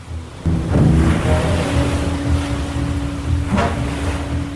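Continuous roar of surf washing in, with a couple of louder surges, over a steady low engine-like drone throughout; no one speaks.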